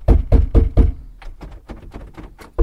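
Four loud, heavy knocks on a door land in quick succession, followed by a run of softer, uneven raps and one more hard knock at the end, with no voices.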